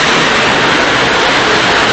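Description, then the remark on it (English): A tram pulling in at a stop in Frankfurt, heard loud as a steady, dense rumble and hiss of wheels and motor that holds evenly throughout, with no voices. “And our tram is just arriving.”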